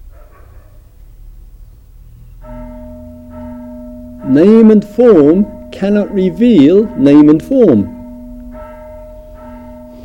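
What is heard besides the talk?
bell ringing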